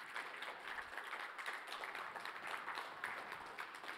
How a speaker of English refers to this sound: Let's give the Lord a hand clap today.